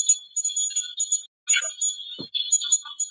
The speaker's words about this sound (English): So I'm going to play it one more time. You'll hear the temperature gauge going off. Sounds like Morse code again.